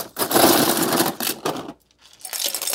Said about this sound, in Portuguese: Vamos botar gelo também na nossa versão sem álcool.